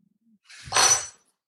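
A bottle opener clinks and clatters in one short, bright metallic burst lasting under a second, fairly loud, with no voices over it.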